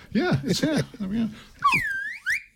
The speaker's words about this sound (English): I could do this. I've got a swanny whistle.